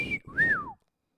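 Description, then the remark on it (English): A voice imitates a car lock chirp with two quick whistled tones: a short high note, then a brighter rising-and-falling whistle that slides down and stops, with silence after. “And then you, you wink right back at the car, and you walk in, and right as you're about to walk in, you hear the car go.”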